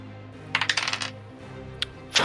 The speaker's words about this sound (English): yes get to roll other dice